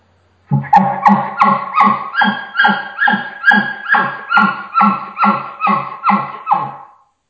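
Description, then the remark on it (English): A two-part call blown on a latex reed, demonstrated over the phone: about a dozen loud, raspy, bark-like notes in a steady, even rhythm, each rising then dropping, with no talking. “So when you put it together, I know it's a little hard just over the phone to kind of demonstrate this technique, but this is what it sounds like when you put the two parts together.”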